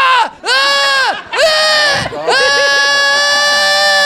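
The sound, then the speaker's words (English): A lone voice imitates a drunken wedding crowd screaming at a performer: four loud, drawn-out, wavering yells in quick succession, the final one held the longest, with no other sounds. “Just absolutely screaming at me.”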